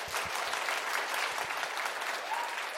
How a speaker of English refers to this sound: Can we get some hand claps for that?